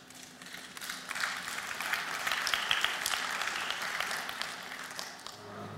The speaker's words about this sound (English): You did, we believe, so our applause, we give it to Jesus.